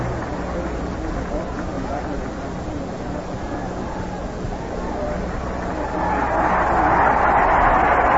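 A steady murmur of a large baseball stadium crowd during a San Diego Padres game swells into a louder, cheering roar over the last couple of seconds as the Padres' lead is posted in the second inning.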